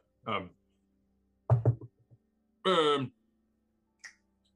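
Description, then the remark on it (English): A brief cluster of dull knocks on a door, fairly loud, set between short wordless vocal sounds before and after, ending with a faint tap. “Should we open the door? Oh. I guess we should maybe knock, make sure he's okay.”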